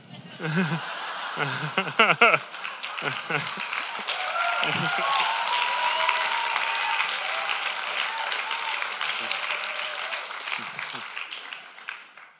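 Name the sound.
audience clapping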